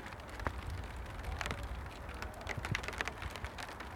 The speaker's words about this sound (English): Oh, it's raining. I don't know if you can hear that from here, actually. I don't know how good the microphone is.